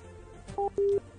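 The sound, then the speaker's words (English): A telephone busy signal: two short electronic tones, the first very brief and the second held a little longer, with a faint background hum and no voices. “Oh, it's busy.”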